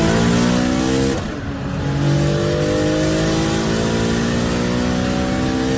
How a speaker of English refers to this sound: Listen to the thing. You know, it's a $250,000 engine, exactly, right?